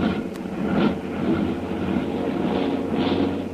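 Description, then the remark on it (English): A heavily loaded propeller airplane climbing with cold engines, one starting to misfire, drones steadily with a rough, uneven throb, its pitch and loudness wavering slightly as though sputtering. No voices are present. “Those motors are cold. One of the motors there is starting to miss.”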